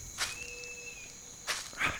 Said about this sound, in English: Ah! Goddamn mosquitoes.